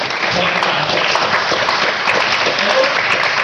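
A steady, dense round of applause fills the whole stretch, loud and unbroken clapping from a crowd with no pauses, a few faint voices mixed in underneath.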